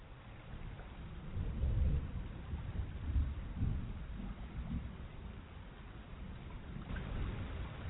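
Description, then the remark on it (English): Steady rain hisses throughout while deep, rolling rumbles of thunder swell and fade in the low end, loudest early on. No voices are present. “I love the rain on my window.”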